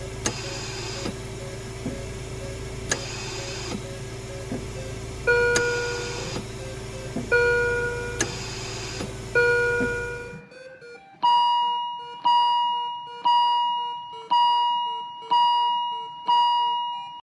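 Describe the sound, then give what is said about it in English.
Intensive care unit equipment beeps and alarms: steady electronic tones chime every couple of seconds over a constant mechanical hum, then a brisker alarm of bright, multi-tone beeps repeats about once a second. “Perhaps you've had the unfortunate experience of being familiar with these sounds, sounds typically heard in an intensive care unit.”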